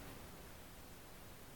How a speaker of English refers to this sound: is there anything I could do to stop that hissing? Do you hear that?